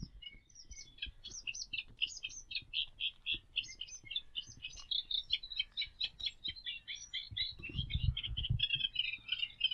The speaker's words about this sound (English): Another reed warbler.